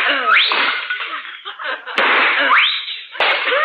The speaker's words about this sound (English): Oh, you shot those two china pheasants. Good hunting, old boy.